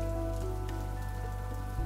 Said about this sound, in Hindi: इंतजार के इस बेकल पल में एक ख्याल जहन में आया है कि कितना हम भी इस बारिश को तरसे हैं।